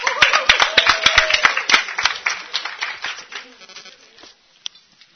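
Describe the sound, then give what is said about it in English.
A crowd bursts into loud, dense applause, many hands clapping at once, which thins out and fades after a few seconds, leaving a couple of scattered final claps. “A big applause for our...”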